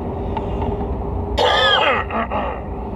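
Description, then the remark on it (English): A single harsh, raspy cough bursts out, followed by a couple of faint catches of breath, over a steady background hum. “Man, I'm gonna need a cough drop.”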